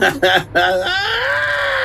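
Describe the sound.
A man's voice gives three quick, loud bursts of laughter, then breaks into a sustained, high-pitched feminine shriek that holds steady to the end.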